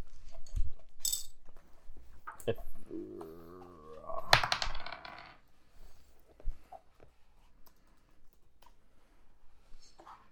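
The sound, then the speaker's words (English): Dice clatter and tumble across a hard surface in a quick burst of sharp clicks and rattles, followed by scattered softer taps and faint background noise, as a player rolls during a game. “Well, you can go ahead and roll, and then we'll apply afterwards.”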